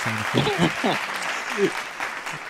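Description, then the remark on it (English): A crowd claps steadily in a dense, continuous patter, with a few voices calling out and cheering over the applause throughout. “I mean, let's get the applause now.”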